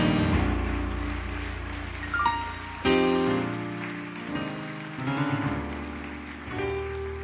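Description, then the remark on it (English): A church audience claps steadily in praise and appreciation, a dense, continuous wash of applause, while sustained keyboard or organ chords play loudly alongside, with no one speaking. “Would you invite them here with your clap of praise and appreciation?”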